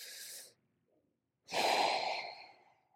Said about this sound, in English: Take a deep breath, a couple of deep breaths, and exhale.